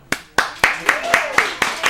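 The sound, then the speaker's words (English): Steady, rhythmic clapping: eight sharp, even claps at roughly four per second, moderately loud, with a faint voice murmuring underneath. “Round of applause.”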